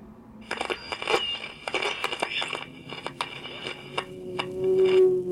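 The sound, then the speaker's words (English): A plane roaring down out of control crashes, heard as a burst of crunching, crackling impacts and tearing debris, loud, with a sustained low tone rising at the end and no voices. “You hear the plane roaring down out of control and then crashing into silence.”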